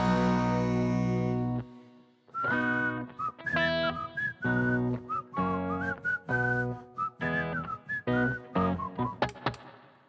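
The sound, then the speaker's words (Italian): A brief sustained chord fades, then a lively whistled tune rises over a steady, chugging rhythmic accompaniment, fairly loud, imitating a train whistle. “Troverai l'amore che non hai avuto mai, e sentirai l'amico treno che fischia così.”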